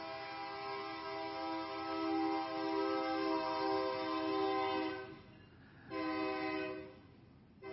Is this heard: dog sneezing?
no